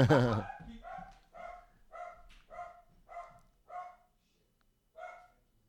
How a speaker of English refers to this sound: All right, the dog's attacking.